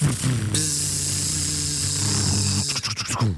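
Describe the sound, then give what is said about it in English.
Voices imitate a helicopter and a bee as rival entries in a noise-making game: a steady, low, buzzing drone joined by a harsh, hissy whir, then choppy, rhythmic bursts near the end, all fairly loud. “So helicopter versus bee.”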